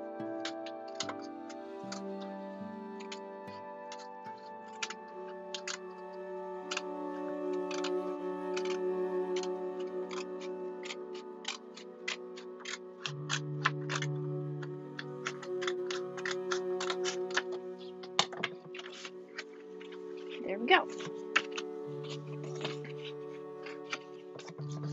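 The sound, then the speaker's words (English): Crisp snipping of scissors cutting along a line to make a wavy edge repeats in quick, uneven bursts throughout, with a steady bed of soft tonal music underneath and no voices. “It's just for something to do, and the scissors are cute.”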